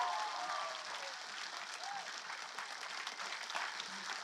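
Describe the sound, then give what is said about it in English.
A large church audience claps steadily and continuously for the Lord after a prayer for healing, a dense wash of applause with faint cheers and voices mixed in, from start to finish. “If you believe God answered your prayer, give the Lord a clap and a shout.”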